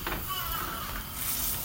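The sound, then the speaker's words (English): A cheese and Nutella toastie sizzles in a frying pan on a hob, a steady hiss with fine crackling that holds at an even level throughout, with no one speaking. “You should be able to start to hear the sizzle coming from the cheese toastie at this stage.”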